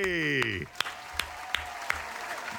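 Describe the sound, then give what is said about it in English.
A brief golf clap in a studio congratulating a broadcaster on calling his 1,000th career regular season game: a handful of slow, sparse, crisp claps spaced evenly apart, following a voice that trails off at the start, over a steady background hiss. “The golf clap in studio was rousing, but I do want to say congratulations on 1K.”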